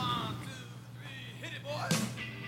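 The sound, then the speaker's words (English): A car door shuts once with a short, solid slam partway through, set against a low background hum and faint murmuring voices. “I heard a car door shut.”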